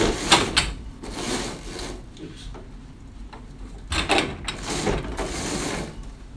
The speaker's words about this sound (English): I'm going to shut the blinds.